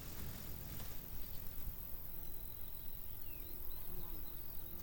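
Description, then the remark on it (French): A large digger wasp, known as Nina Nina in the Bolivian altiplano, buzzes steadily and continuously for several seconds over a rough outdoor background hiss with no voices. “Un de ces insectes utiles est un type de guêpe fuisseuse.”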